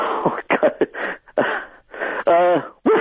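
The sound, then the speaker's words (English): A person vocally imitates a barking owl's call: a string of short, gruff, voiced bursts in uneven rhythm, rising into a louder, strained, harmonic-rich note near the end, with no other sound around it. “you want to get rid of barking owls?”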